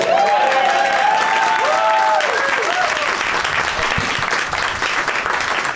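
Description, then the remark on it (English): An audience at a taping of the show Doug Loves Movies in the Nerd Melt Showroom at Meltdown Comics in Los Angeles, on May 15, 2017, applauds steadily, a dense wash of clapping with a few whoops and cheers rising above it early on, then the clapping gradually thins out toward the end. “It's Monday, May 15th, 2017, 174 days till Ragnarok, and this is the 31st show we've taped this year. Applaud.”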